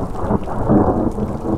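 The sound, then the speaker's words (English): A low, broad rumble of distant thunder from a storm approaching from the east over a hillside in the Salmon River Mountains rolls on steadily, its deep energy swelling and fading slightly with no voices present. “A storm is approaching.”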